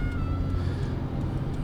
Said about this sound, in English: I might have to go ahead here. All right, guys. We're doing some evasive driving.